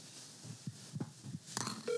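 A few soft, low thumps pulse in a loose rhythm, then electronic phone tones chirp and a steady ringing tone starts at the end as an outgoing call connects.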